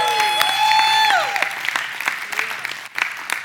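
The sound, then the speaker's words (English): An audience claps steadily for a few seconds, a dense patter of many hands. A held whoop rings out over the clapping at the start, then the applause carries on alone. “Can you give them a round of applause for a good job?”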